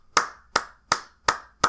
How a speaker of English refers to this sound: But hey, they clapping.